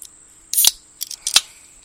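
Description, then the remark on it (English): An MD 2020 Citrus Storm aluminum drink can cracks open with a sharp metallic pop and a brief bright hiss, followed by a couple of quieter tinny clicks. No one speaks. “Crack open this bad boy.”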